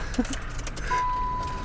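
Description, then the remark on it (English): A small car engine runs steadily, a constant buzzing drone with a thin, high whine holding through the second half and a brief clink near the start. “It sounds okay. Like a toy car.”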